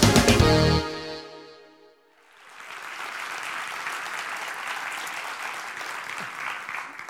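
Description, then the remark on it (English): A sustained musical chord fades away, then the audience at Hilton Head Island Community Church breaks into steady, full applause welcoming a guest speaker, holding at an even level for several seconds, with no voices on top. “I think this is the first time I've had an applause, and when I haven't even started.”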